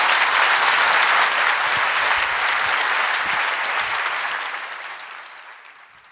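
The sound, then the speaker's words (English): A loud burst of audience applause for a gentleman, dense and steady clapping that holds for several seconds before gradually thinning and fading out toward the end. “And whoever this gentleman is, a big round of applause for him, please.”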